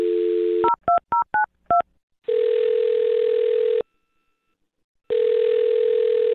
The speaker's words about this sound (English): Okay, I'll dial his phone number right now, okay? Here we go.